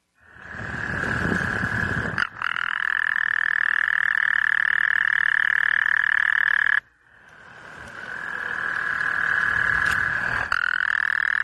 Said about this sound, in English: I don't understand. This is just a clip of a bunch of frogs croaking.